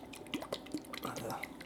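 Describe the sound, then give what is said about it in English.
A bottle of sauce being shaken, its contents sloshing and clicking in a quick burst of wet, rhythmic knocks, fairly loud, with no voices. “All right, well, let's give it a little shake.”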